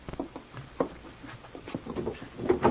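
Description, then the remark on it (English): A desk drawer slides open with scattered knocks and scrapes, followed by the light clink and rustle of a bottle being lifted out. No one speaks. “There's a bottle in the desk drawer over there”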